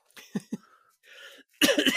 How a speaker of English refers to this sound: That's the first cough you missed all show.